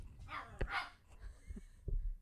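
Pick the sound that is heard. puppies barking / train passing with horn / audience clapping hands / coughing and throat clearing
puppies barking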